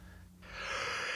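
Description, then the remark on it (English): A breathy yawn: a long open-mouthed intake of air that swells after a brief pause and holds steady, loud and airy, with no talking. “Excuse my yawns.”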